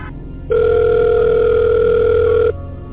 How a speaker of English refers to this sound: Your phone rings, and a mysterious voice speaking in English with an Israeli accent tells you to stop your coverage or to turn it against Hamas.